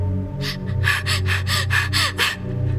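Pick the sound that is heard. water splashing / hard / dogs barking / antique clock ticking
hard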